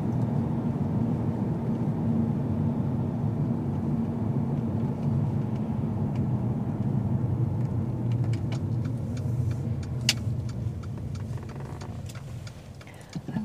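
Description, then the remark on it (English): Steady low engine and road rumble from inside a moving car, a continuous droning hum with a few faint clicks and ticks near the end. “Driving is one of the most pleasant things to me when you don't have a destination and you just kind of drive around endlessly and the road takes you to different places.”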